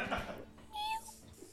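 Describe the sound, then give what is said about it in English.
A person gives a short, playful meow, imitating a cat with a rising-then-falling whine that lasts under a second. “Meow. I'm a little questions kitty.”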